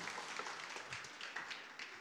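An audience claps steadily for two seconds, a dense patter of many hands that sounds somewhat distant and subdued, with no voices standing out over it.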